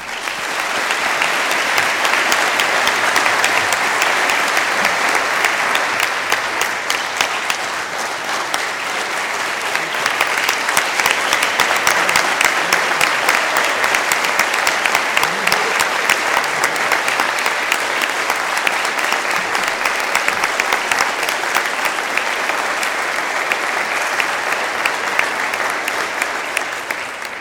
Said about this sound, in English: let's extend our congratulations and applause.